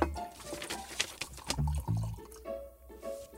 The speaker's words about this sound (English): Go on, shall I have another de Bonnet? Shall I pour us one? Yeah, please be careful.